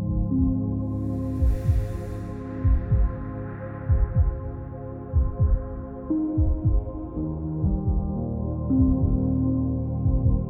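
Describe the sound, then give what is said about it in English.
A steady heartbeat thumps low and regular, roughly once a second, beneath a warm, sustained droning pad of held tones, with a soft airy swell early on. “You can feel the stability of your reliable heartbeat.”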